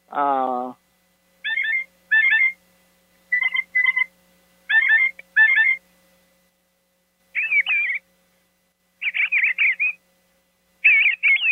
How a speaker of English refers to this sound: Makes various bird sounds. When you put it down and lift it up, the light will activate the cup and make the various bird sounds. It plays 8 different bird sounds. It's a ceramic 12-ounce cup.